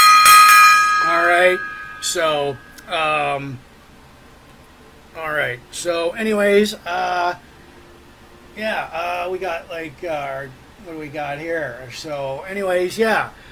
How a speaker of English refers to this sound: The random gong solo.